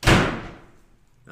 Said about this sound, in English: The fuck was that? Hey, who's slamming doors? The ghosts.